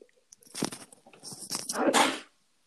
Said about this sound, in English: You sneezing over there? Sorry about that. Fighting the cold, maybe.